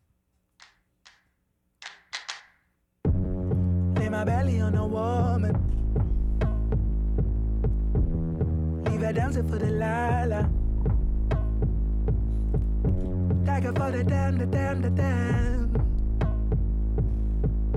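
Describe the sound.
A few sharp claps open, then a recorded song kicks in loud with a heavy, steady bass beat, layered instruments and a sung vocal line that carries through to the end.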